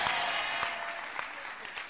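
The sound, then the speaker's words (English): An audience claps steadily, a dense wash of many hands with a few sharper individual claps standing out, sustained at a fairly even loudness throughout. “Those who are clapping, may an angel visit you tonight.”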